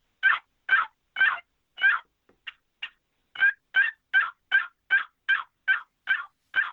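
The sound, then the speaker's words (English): An old turkey box call works out a slow, steady run of about a dozen coarse gobbler yelps, loud, with a couple of quieter clipped notes in a brief lull midway. “All you got to do, that's a gobbler yelp on a box call, and that will call and kill you a lot of small turkeys.”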